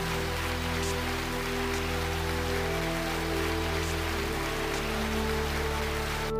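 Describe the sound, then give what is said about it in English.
A dense, steady wash of applause from many hands holds at an even loudness for several seconds, with a low sustained hum running underneath and no voices. “And a round of applause for that.”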